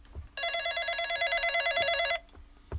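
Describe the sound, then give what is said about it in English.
A telephone bell rings in one continuous, loud burst lasting under two seconds, with a bright rapid trill, then stops; faint background noise and a few soft knocks surround it. “I don't want your phone to ring.”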